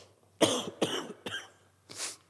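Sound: cough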